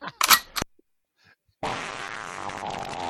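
A quick pair of sharp mechanical clacks like a gun being cocked, a brief pause, then a loud, sustained, buzzy fart sound effect that carries on to the end.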